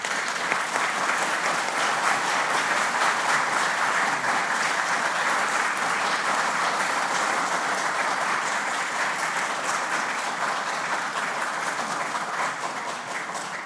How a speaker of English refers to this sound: Y'all quit clapping. You're cutting in on my time. Just kidding.